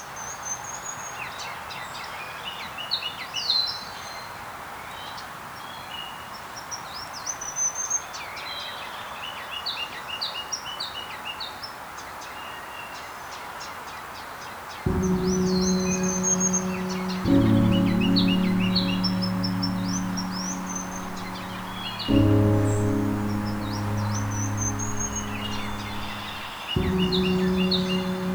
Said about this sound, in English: The ruby-crowned kinglet is a tiny greenish-gray bird with white wing bars and a ton of energy. The males have a ruby patch at the top of their head that they elevate in breeding season, often while singing.